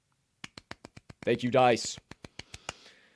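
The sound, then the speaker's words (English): Dice clatter in a quick run of about a dozen sharp clicks that slow toward the end, with a brief wordless vocal sound rising and falling in the middle; the dice are rolled to pick sports betting lines. “right now, per the all-knowing, ever-living, albeit inanimate, cubicle objects that be the money line dice.”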